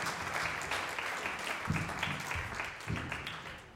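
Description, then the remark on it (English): An audience applauds the children steadily, many hands clapping in a dense, continuous patter with a few stronger swells, sustained for the whole stretch with no voices over it. “Guys, can we give the children a round of applause?”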